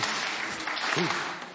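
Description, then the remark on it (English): An audience claps in a dense, steady burst for about a second and a half for a child about to try a long jump, with a faint voice briefly rising through the applause near the end. “Let's give him the clap.”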